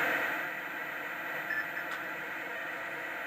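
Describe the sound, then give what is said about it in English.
Video-game ocean sound: a steady, hissing wash of surf noise that holds at an even level with no distinct wave crashes, and no one speaking. “Well, that's just the sound of the ocean.”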